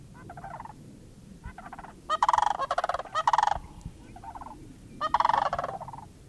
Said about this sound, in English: At the side of the road, sandhill cranes, the bird we've been hoping to see. He opens the window and whispers to me to get out, to make sure I can hear them.